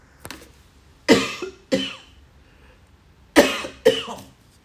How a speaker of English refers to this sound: See, he wants me to cough, but I'm still going. I'm still going. I'm not stopping.